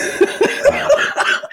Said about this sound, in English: Oh my god, sorry, my wet cough.